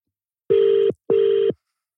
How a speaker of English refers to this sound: Yeah, he's not picking up. That's poor for me. Yeah. He's asking to call him back, he don't answer the phone.